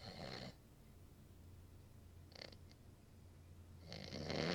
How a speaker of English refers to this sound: That nigga snoring on the pod, bro. Loud as hell.